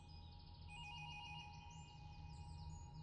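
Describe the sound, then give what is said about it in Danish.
A telephone rings steadily early in the morning with a continuous electronic trill, its warbling pattern repeating over a low background hum. The ringing is fairly quiet and fills the whole moment, with no one speaking. “Og jeg vidste allerede, da telefonen ringede, at der var sket noget.”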